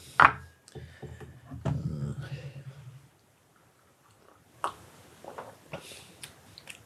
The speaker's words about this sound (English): I'm going to have a little sip of my tea.